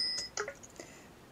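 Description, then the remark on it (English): A quick, quiet bicycle bell gives a couple of bright metallic rings with a short shimmering decay, heard alone. “A bicycle.”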